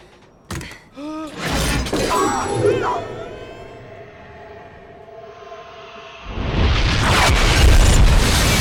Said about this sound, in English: And then some of the best dummy work since Casino. When the car falls and explodes and it's just like, that's clearly a dummy.